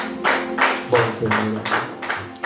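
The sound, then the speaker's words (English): A church audience at a leadership conference gives a clap offering to Jesus, clapping in a steady, rhythmic beat pulsing about twice per second, with a full sound and murmuring voices underneath. “Somebody give a clap offering to Jesus.”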